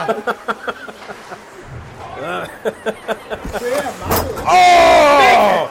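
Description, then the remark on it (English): A series of sharp knocks against glass, then one loud, hard bang near the end as a big hit goes right up into the glass, with people talking and shouting loudly over and after it. “Big hit right up into our glass.”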